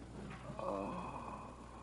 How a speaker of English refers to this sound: he's gasping for breath. Hold his head up.